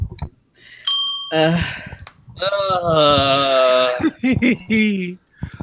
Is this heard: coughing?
no